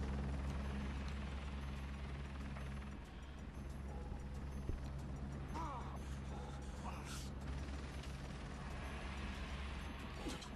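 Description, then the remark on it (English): A steady, droning helicopter hum runs throughout, with a deep rumble and mechanical creaks and rattles layered over it, fairly loud and continuous with no one speaking. “Oh, and it, James's girlfriend is hijacking a helicopter.”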